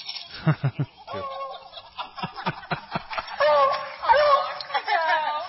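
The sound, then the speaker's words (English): A beagle, playing with a small dog, bays: a quick run of short, yelping barks followed by a longer, wavering howl with a rough, gobbling quality, fairly loud throughout. “That's a beagle bark for you.”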